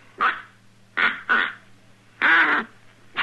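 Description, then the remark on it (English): A duck call blown in a series of short, raspy, nasal quacks, irregularly spaced, with one longer drawn-out blast, over a faint steady low hum. “It takes kind of a knack to blowing it.”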